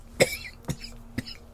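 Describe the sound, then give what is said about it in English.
A voice imitates a man's spluttering cough as he comes to on the back of a wagon and sits bolt upright, taking a breath: three sharp, raspy bursts spaced about half a second apart, fairly loud, with the first the strongest and no speech around them. “sort of, like, coughing as he splutters to, like, taking a breath.”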